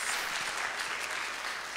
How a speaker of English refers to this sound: Thank you guys for that. Let's give them another hand clap this morning. Thank you so much.